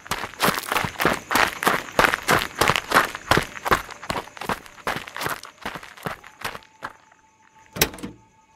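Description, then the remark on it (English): Quick, evenly spaced running footsteps of a person running for a car while carrying a small creature pound, gradually thinning and slowing before a pause and one sharp, solid thud at the end. “I was running out of time, so I picked up the stubborn thing and ran for the car.”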